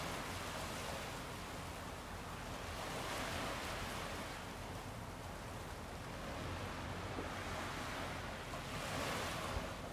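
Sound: ocean waves with wind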